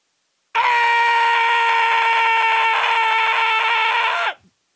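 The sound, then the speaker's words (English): A single loud, sustained human scream made well away from the microphone, a high, strained shriek held steadily for about four seconds before cutting off abruptly, with no talking around it. “Now, you see, I can really scream loud. And I was way off the mic on that one.”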